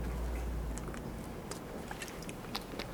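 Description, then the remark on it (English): Someone quietly sips water, with a scatter of small wet mouth clicks and swallowing sounds over a low background hum; no one speaks. “Drink another sip of my dirty water.”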